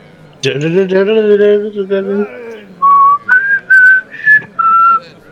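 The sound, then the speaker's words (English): A hummed, voiced phrase gives way to a clear whistled tune of five short, distinct notes stepping upward, fairly loud, with brief gaps between them. “No whistling.”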